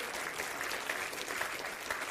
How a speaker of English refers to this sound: Well, give Jesus another hand clap today. Amen.